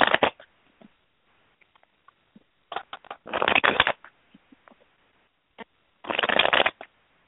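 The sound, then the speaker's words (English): Tarot cards being shuffled, with three brisk riffling bursts spaced a few seconds apart and soft taps and clicks of cards in between, no talking. “I'm still shuffling, though, and I'm definitely here.”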